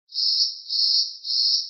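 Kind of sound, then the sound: insect, crickets chirping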